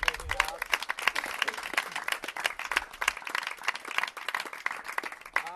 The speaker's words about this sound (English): So give everybody applause. Woo!